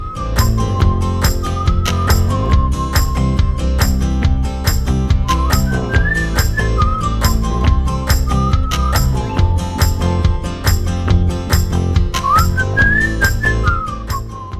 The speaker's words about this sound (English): Oh, I was hoping that we were going to catch you whistling, bro. Sorry. I unmuted you and you started whistling, and then I pulled the music down.